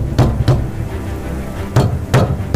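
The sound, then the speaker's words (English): Heavy, booming thuds of fists pounding on the vast doors of an ancient monastery: two blows, a pause, then three more in an uneven, urgent rhythm. Deep and loud, with no voices. “He staggered to the vast doors and pounded on them with all of his remaining strength.”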